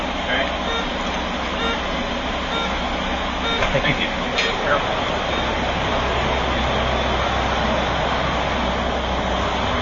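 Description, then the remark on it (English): Steady engine drone and road rumble fill the inside of a moving bus in the morning, a constant loud wash of noise with faint, indistinct voices somewhere beneath it. “Leaving at 7:09 used to be fine for this bus, but they got sluggish, and then sometimes leaving at 7:05 was not enough time for this bus.”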